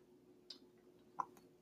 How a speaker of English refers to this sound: The third reason why this really kind of upsets me and gets under my skin as I sip my iced tea. Hold on.